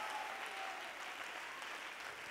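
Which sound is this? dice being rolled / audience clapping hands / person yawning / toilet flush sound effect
audience clapping hands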